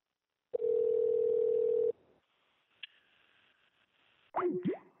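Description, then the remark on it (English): A call cuts off into a loud, steady, mid-pitched dial tone lasting over a second, then faint line hiss, a single click, and a brief burst of wobbling, sliding electronic tones. “They fucking like hung up.”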